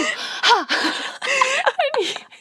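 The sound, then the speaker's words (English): A person imitates heavy, disgusted gasping: several fairly loud strained breaths and heaving groans in quick, uneven succession, with no actual words. “That's how he's probably gonna be breathing during the act.”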